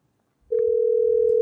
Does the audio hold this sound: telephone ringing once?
yes